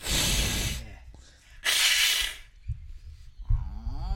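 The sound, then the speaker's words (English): A voice imitates an angry cat with two loud, sharp hisses separated by a short pause, followed by lower, throaty growling and yowling sounds toward the end. “just descended into making cat noises for our podcast. I was always good at, like, the angry, like...”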